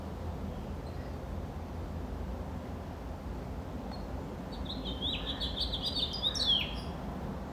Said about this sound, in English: I'm looking at a house finch. It's literally sitting on my house.